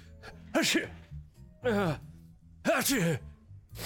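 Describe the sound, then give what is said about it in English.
Three loud sneezes, spaced about a second apart, each a sharp breathy burst with a voiced, wavering pitch, with near-quiet pauses in between, after the soft back of Lil Stop was rubbed on the face and some of his hair got into the nose. “Why are you sneezing?”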